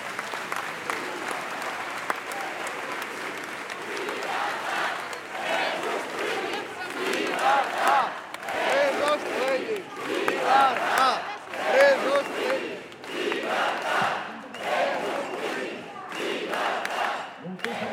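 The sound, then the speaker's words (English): A large crowd gathered outside the Omnium Center in central Barcelona roars steadily with applause and cheering as Catalan leaders come out to take the stage, mixed voices shouting throughout, and a few brief high whistles rising out of the din midway through. “There's a big crowd forming.”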